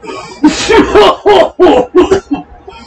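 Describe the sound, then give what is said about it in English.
A man's loud, hacking coughing fit, five or six harsh bursts in quick succession with short raspy gasps between them. “And if you've missed his coughing, check out Now That's What I Call Coughing, Volume 2.”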